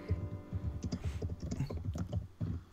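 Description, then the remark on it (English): Steady, rapid clicking of keys on a computer keyboard, with irregular bursts of taps and a faint low background hum, no voices. “for me to hear you typing.”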